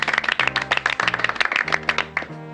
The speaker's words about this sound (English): Please, I don't deserve applause.